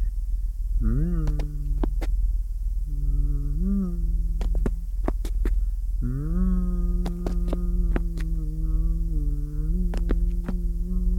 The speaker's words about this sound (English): You hear stumbling footsteps by your head, followed by a tuneless humming.